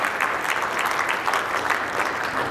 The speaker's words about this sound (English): you give him a big round of applause as he comes to the stage this morning.